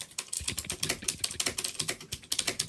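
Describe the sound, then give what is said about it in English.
Rapid typing on a computer keyboard, a dense, steady patter of crisp clicks and clacks, with no voices over it. “if you hear me typing while John's talking, please don't assume that I'm bored”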